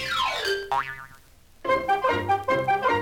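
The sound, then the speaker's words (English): A cartoon boing of a chestnut falling on Chicken Licken's head: a descending sweep followed by a wobbling springy twang, then a burst of bright, bouncy musical tones. No talking. “Just as they were about to enter the cave, a chestnut fell on Chicken Licken's head.”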